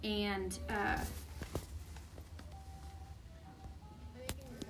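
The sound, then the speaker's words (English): A deck of tarot cards being shuffled, with soft rustling, scattered clicks and sharper taps. A brief muffled voice is heard at the start. “I think you're not supposed to shuffle tarot cards like that anyways.”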